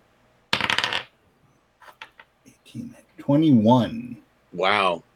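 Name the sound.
dice being rolled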